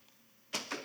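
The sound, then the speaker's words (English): An arrow strikes a foam target with a sharp, dull thwack, followed a split second later by a second softer impact, after a brief quiet stretch, with no talking. “Good shot. You hit foam.”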